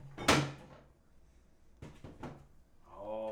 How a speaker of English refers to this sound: So I'm going to grab it from the fridge right now. Oh, boy. Okay. It's buried deep in my fridge. Ooh. Behind the 1919 case.